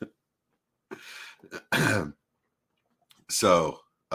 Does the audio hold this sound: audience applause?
no